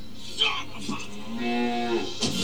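A cow moos once, a drawn-out, low droning bellow lasting about a second, fairly loud with a brief rustle before it and a breathy noise at the end.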